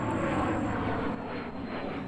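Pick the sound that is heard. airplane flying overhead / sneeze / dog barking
airplane flying overhead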